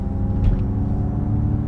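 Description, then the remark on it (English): A car of around 487 brake horsepower rolls over road bumps on a twisty Alpine route, heard from inside as a steady deep engine and road rumble with a brief knock partway through. No one speaks. “So we'll go over the bumpity bumps.”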